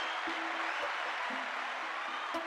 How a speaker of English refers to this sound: Let's give Caleb a round of applause.